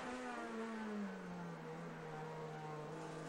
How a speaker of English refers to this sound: He's heading up the hill now. Just love the sound of that 4-cylinder engine being revved within an inch of its life.